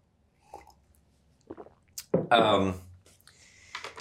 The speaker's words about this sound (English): Well, let me get a sip of water and we can move on then.